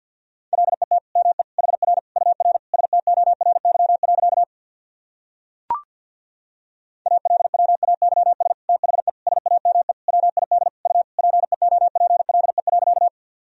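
Rapid Morse code at around 50 words per minute, sending practice sentences built from the top 300 words and abbreviations: a steady mid-pitched beep keyed in quick dots and dashes, sent in two long runs separated by a short pause and a single click.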